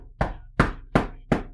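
Four evenly spaced knocks on a door while trick-or-treating on Halloween, each a sharp, solid thud with a quick decay, sounding alone with a faint low hum underneath.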